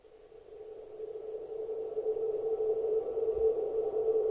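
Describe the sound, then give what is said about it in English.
A steady, eerie, high-pitched electronic tone hums like a sci-fi space effect, swelling slightly in volume and holding an unbroken pitch throughout, with no voices. “Space sound high.”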